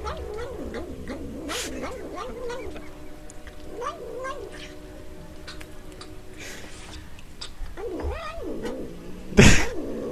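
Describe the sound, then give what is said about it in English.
A cat makes a run of short, wavering murmuring vocalizations, a repeated num-num-like sound while eating spoonfuls of sour cream, with faint clicks and a sharp clatter near the end. “A cat, I shit you not, says num num num num num num num when it eats spoonfuls of sour cream.”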